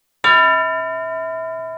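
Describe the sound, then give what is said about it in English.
A single bell strike rings out sharply and then sustains, its bright metallic tones humming steadily as they slowly fade. No one speaks over it. “Well-timed bell.”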